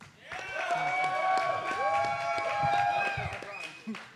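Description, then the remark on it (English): An audience claps and cheers loudly for about four seconds, voting that Josh Tiefert's argument won the round, with dense rapid clapping, high whoops and whistle-like yells over the crowd, tapering off at the end. “Guys, give it up if you think Josh Tiefert's argument won the whole round.”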